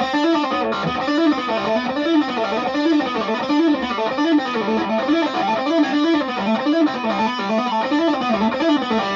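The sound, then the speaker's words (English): A distorted electric guitar plays a fast, repeating run of hammered-on and pulled-off notes at the 5th, 7th and 9th frets on the middle two strings, cycling in a steady wavy pattern at an even loudness with no voices. “So that was the 5th, the 7th and the 9th on the middle two strings.”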